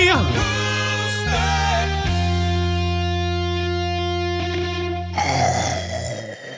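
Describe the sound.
A voice imitates a dragon breathing fire with deep, growling, distorted roars: a few short bursts, then one long sustained rumble that trails off into a breathy, hissing rush.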